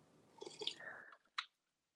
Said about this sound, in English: I'm gonna go take my sip, girl.